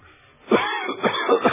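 A man coughs and splutters after inhaling smoke, in a short, throaty fit of several rough bursts, fairly loud, with a strained, groaning quality between the hacks.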